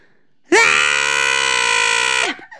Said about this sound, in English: What was that? That was my scream.